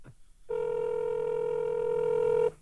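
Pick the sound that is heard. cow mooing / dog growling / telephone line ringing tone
telephone line ringing tone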